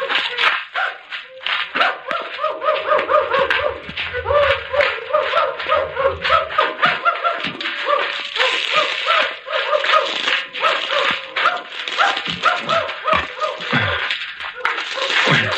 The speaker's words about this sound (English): Horses. Chickens. And now dogs. Oh, everything's against us.